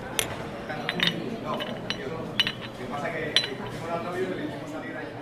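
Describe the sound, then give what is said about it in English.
Cups of coffee, including a cappuccino, clink together a few times in quick, bright taps in a toast in Rio, with voices murmuring underneath throughout. “Cheers. Right, cheers.”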